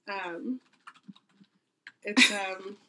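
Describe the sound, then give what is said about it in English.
Several soft, irregular keystrokes clack on a computer keyboard as a person looks up a quote, spaced unevenly over about a second, framed by brief voiced vocal sounds at the start and end. “She's still typing.”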